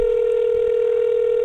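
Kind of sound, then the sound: signal or alarm, phone call ringing tone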